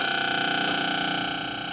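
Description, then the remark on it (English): An MF radar transmitter pulsing radio waves in a rapid, even stream, about thirty pulses a second, blending into a harsh, tonal electronic buzz that holds steady and eases slightly at the end, its gentle fading up and down caused by giant atmospheric waves, with no voices. “That's the transmitter firing at 30 pulses a second.”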